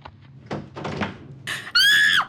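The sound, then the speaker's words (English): A door bangs open with a couple of loud thuds and rattles, then a sharp, high-pitched scream rings out briefly at the end. “Door like this.”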